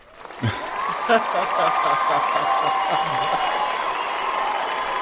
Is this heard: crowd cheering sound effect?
yes